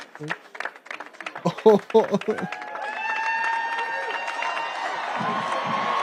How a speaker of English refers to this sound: That was him falling. Oh, I thought this was just clapping. No, it was clapping and then him falling.